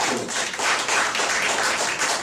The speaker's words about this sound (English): Any other Arabs? Clap if you're from the Middle East.